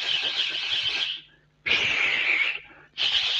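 Three forceful, hissing exhales, each lasting about a second with short pauses between, controlled breaths pushed out through the teeth during a flurry of punches. No talking.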